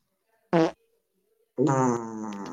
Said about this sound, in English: Play them back to back. Let's see. Like, oh, which ones? Both of them. Oh, the quick fart and then that one.